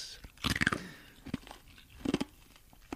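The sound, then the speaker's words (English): Someone crunches and chews an ice cube: a cluster of sharp, loud cracks at the start, a single crack after, then another burst of crunching later, with quieter chewing in between. “It's taking me ages to eat this okay, ice cube.”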